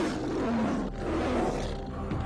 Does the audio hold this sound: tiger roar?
yes